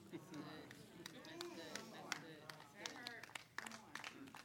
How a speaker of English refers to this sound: Thank you for the polite golf clap.